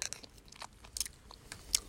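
Soft, sticky chewing of honeycomb, with irregular wet crunches and smacks repeating every fraction of a second, a couple of sharper bites standing out, and no talking.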